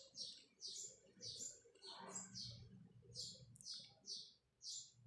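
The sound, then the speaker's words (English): A bird tweets in quick, bright chirps, repeating steadily for several seconds over a low background murmur of indistinct voices. “And I love that moment, like in that pause, you feel the pause, like this bird tweeting.”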